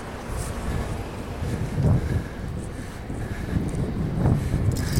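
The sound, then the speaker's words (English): Wind gusts across a pier in Greenpoint that juts far out into the river, facing Manhattan, in the morning, a steady low rumbling roar that buffets the microphone and swells in two stronger gusts, with no voices. “This pier, it sort of juts out into the, like, pretty far into the river.”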